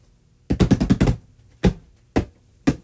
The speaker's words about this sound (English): Ah! The box I've been slapping is about to fall off.